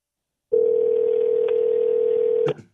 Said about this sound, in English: it's so hard to dial out on our phone system